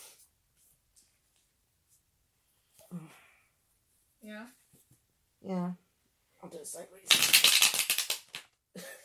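A few quiet spoken words, then a loud riffle shuffle of a card deck, a dense rapid flutter of cards lasting about a second before fading out.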